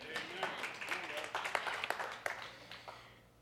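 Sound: audience clapping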